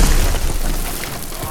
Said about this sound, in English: With a massive uppercut, Dallas smashed a hole in the ceiling.